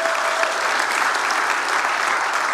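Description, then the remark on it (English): Steady applause from a church audience clapping for the mothers and women, a dense wash of many hands clapping at an even, loud level throughout with no voices standing out. “Let's clap one more time for all the moms, the women.”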